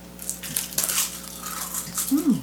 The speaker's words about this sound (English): It's like a green chip. It's got more chew than a chip, for sure. Like, it's a little more chewy on the after the crunch.